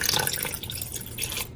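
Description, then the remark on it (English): 100 grams of water pours steadily into a mixing bowl holding ghee and salt for a batter, lasting a second or two: a continuous splashing trickle with a bright hiss, slightly uneven as the stream shifts, then tapering off abruptly. “We need about a quarter of a teaspoon of salt, so just pinch-ish, and 100 grams of water.”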